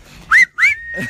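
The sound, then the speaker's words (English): A penis-shaped novelty whistle is blown twice, loud: two short, shrill toots sliding upward in pitch, the second holding a thin steady tone before fading. “Enjoy your dick whistle and improve for next week.”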